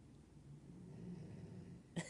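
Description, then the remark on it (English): A dog snoring softly while lying on a tile floor in a bathroom: a low, rough rumbling breath drawn out for most of the moment, ending in a brief, sharper snort. No voices. “And how is my dog snoring so loud? You hear that?”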